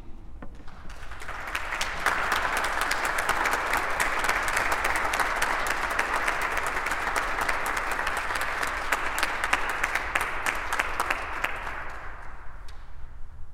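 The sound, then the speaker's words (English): A crowd at a morning service breaks into sustained applause to thank and recognize standing veterans and ROTC members, a dense wash of many hands clapping that swells within the first couple of seconds, holds steady and loud, then tapers off at the end. “I would like to invite those of you who are veterans or members of the ROTC to please stand so that we can thank you and recognize you with our applause.”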